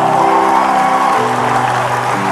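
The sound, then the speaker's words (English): A large crowd at a Christian worship gathering claps its hands together in praise of God, a dense, continuous, loud burst of applause, with sustained musical tones held underneath. “Give him a mighty hand clap of praise.”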